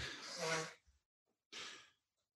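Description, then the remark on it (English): Someone blows their nose: a long, loud honking blast followed after a short pause by a second, briefer blow, with no talking. “… is just blowing his nose.”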